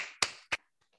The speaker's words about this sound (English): Big applause.